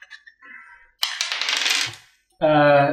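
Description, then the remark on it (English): A small eight-sided die (D8) clatters and skitters across a hard tabletop for about a second, fairly loud, with brief voice sounds just before and after the roll, rolled for damage in a tabletop role-playing game. “Roll damage, please. D8, D8. This is a D8.”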